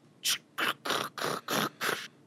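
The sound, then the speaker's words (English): A door lock mechanism unlocking as a gem is inserted into the door: six short, harsh scraping bursts in a steady rhythm, each a rough grinding rasp, with brief gaps between and no voices. “You insert the gem into the door, and you hear a”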